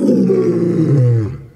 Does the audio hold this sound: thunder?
no